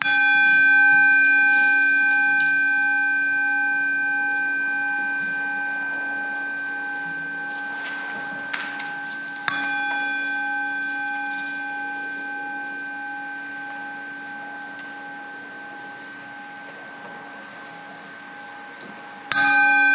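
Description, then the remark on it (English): A single bell is struck four times during a moment of silence, once for each century since 1619, at slow, widely spaced intervals, each clear metallic strike ringing out in a long, steady hum that fades gradually before the next one. No one speaks. “As we sit in silence for a moment, strike our bell four times, one for each of the centuries since 1619.”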